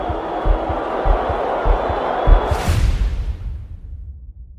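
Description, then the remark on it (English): A large stadium crowd at a Phillies World Series game roars steadily over rhythmic low thumps, then surges into a loud burst of cheering that quickly fades away. “The crowd will tell you what happens.”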